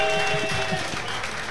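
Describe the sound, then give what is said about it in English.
A short burst of steady applause, many hands clapping in a dense, hissy wash that holds at an even level for about a second and a half, with no one talking. “Yeah, let's give a round clap of applause.”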